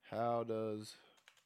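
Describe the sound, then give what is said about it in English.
A voice holds a drawn-out sound, then a few faint, quick clicks on a computer keyboard as someone starts typing a search query. “I can probably hear my keyboard clicking.”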